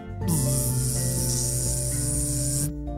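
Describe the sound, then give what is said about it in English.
An electrified metal stick, pushed into the ground and switched on with a button, gives a harsh electric buzz with a loud, hissing crackle that starts abruptly and holds steady for about two and a half seconds over a low droning hum, then cuts off. “The metal stick began to buzz.”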